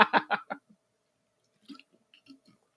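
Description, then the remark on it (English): A few loud, wet slurping sips of Path Water in quick succession, followed by a pause and then softer swallowing and mouth clicks. “It's really good water, and I'm going to have me another sip before I play this next record.”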